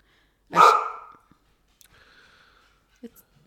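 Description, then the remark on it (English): A single loud, sharp dog bark, followed by a few faint rustles and a softer, drawn-out whine or whimper, then quiet. “All of our listeners know we have a dog, and that.”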